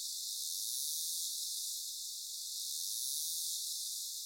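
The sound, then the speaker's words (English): A whale's terminal buzz: a click burst so rapid the clicks blur into one steady, high, hissing drone that runs unbroken for about four seconds, with no voices. The whale emits it while diving to great depths and closing in on fast-moving fish prey such as Arctic cod or Greenland halibut. “The next type is called click burst or terminal buzz, which to my ear sounds like a chainsaw.”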